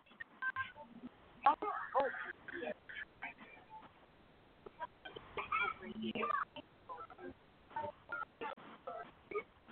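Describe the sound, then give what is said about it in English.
A rapid, irregular string of short telephone keypad beeps as someone dials their own phone to get a better connection, heard through a thin, phone-quality line, with faint muffled voice sounds between some of the tones. “Let me call my phone and see if that's better.”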